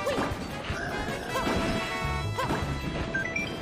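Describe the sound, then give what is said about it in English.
Video game sound effects from Super Mario 3D World of Bowser's broken car being repeatedly hit: dense, repeated crashing and smashing impacts that run without pause, with short bright electronic blips rising near the end. Hitting the car can randomly play a sound effect from Super Mario World. No one speaks. “This can be heard in Super Mario 3D World, where repeatedly hitting Bowser's broken car has a small chance of playing a randomly chosen sound effect from Super Mario World.”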